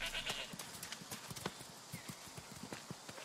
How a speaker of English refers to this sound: Oh, and now there's sheep galore. One ran up to me.